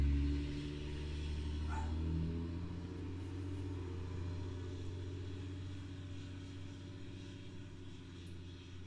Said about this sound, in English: That's a loud-ass truck.